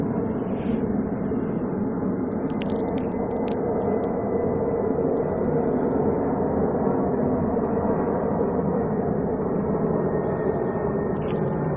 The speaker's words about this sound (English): Excuse me, I have a plane passing over. Excuse me.